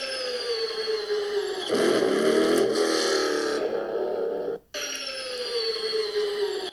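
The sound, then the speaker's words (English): A hybrid race car floored out of the pit: a high, steady electric motor whine gives way to a loud, throaty V8 engine roar that holds for a few seconds, cuts off abruptly, then the rising whine returns. “And then you can hear the electric motor, and then it just switches to the V8.”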